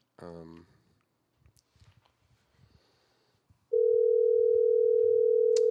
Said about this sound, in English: Hey, Mom, I'm calling you on the phone. Pick up the phone. I'm calling you on the phone. Yo, she ain't gonna answer.